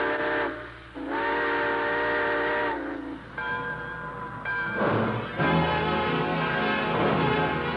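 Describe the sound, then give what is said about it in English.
A train whistle sounds in several long, loud harmonic blasts, with short pauses between them, over the low rumble and chug of a train starting to pull out, at the close of The Railroad Hour radio broadcast. “All aboard. Well, folks, it looks as though we're ready to pull out.”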